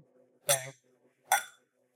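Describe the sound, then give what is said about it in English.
Two bright glass clinks, about a second apart, each ringing briefly before fading, as glasses are touched together in a toast before taking a sip. Faint low background murmur sits between them. “Man, let's cheers this thing up and get a y'all sip, ready?”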